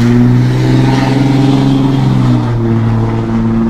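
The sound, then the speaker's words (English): A loud truck engine revs with a deep, steady rumble, its pitch rising and dipping slightly across a few seconds. No voices are heard over it. “I love trucks. I can't believe people hype their trucks up so much.”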